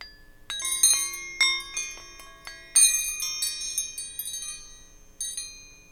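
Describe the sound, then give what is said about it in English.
Metal wrenches struck together in honor of Dominic Toretto of the Fast and Furious films, in a loose series of bright, bell-like chimes, each strike ringing out with long shimmering decay, several clustered hits then a final one, fairly loud with no talking. “Let us chime the wrenches.”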